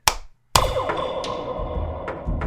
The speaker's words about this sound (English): I'm going to give you three claps. I don't know if you need that, but just